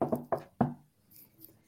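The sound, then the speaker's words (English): Three sharp knocks on wood in quick succession, fairly loud, each dying away fast, followed by near silence with a faint hiss. “I think they should be pretty safely in, knock on wood, regardless of that.”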